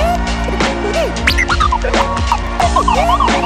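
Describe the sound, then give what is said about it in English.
Several emergency sirens wail over one another, their pitches sweeping up and down in quick overlapping arcs against a dense, scratchy wash of background noise, with no talking. “You hear the sirens?”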